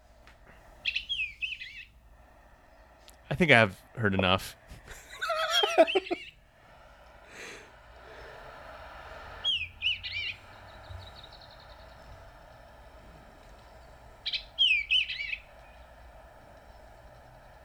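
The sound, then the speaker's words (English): An Eastern Bluebird's soft warbling song: short, clear phrases repeated about three times with long pauses between, over a steady low hum. A person speaks briefly near the start. “Okay, so this is listed under the Eastern Bluebird, and there's multiple recordings of this bird.”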